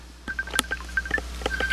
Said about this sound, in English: Yeah, my phone's still going.